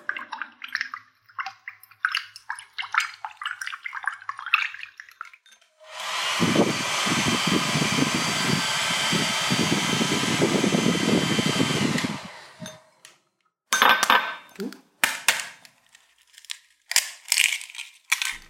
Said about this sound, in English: So it sounded like water being splooshed about and a hoover? Not a hoover. Not a hoover. It's a hairdryer, right? Correct. So is water getting warmer? Is it an egg? Might be.